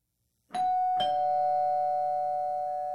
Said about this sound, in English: I think I got a doorbell. Do I got a doorbell? This is what you're about to hear in your life right now. You're about to hear this right here.